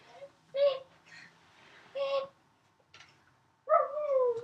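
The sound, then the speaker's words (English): A dog whimpers in short, high whiny cries: two brief ones spaced apart, then a longer, wavering whine at the end, with quiet pauses between. “There's my dog, Max.”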